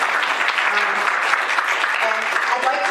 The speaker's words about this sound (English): If you have questions from the ESI front, yes, and he gets applause too.